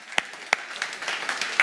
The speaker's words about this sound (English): Okay, how many for 25? Look at you. All right, let's all applaud them.